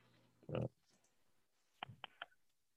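Keyboard typing: a louder muffled knock, then three or four crisp, irregular key clicks close to the microphone against a quiet background.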